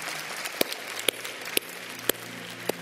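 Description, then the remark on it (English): A crowd applauds in a steady, dense wash of clapping. Sharp, louder claps stand out above it at an even beat, roughly twice a second. No one speaks. “If you're clapping, that means right now at this moment, with the other hand, you're texting the word HOPE to”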